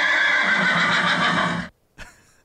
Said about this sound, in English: I'll never hear a horse sound effect the same way again.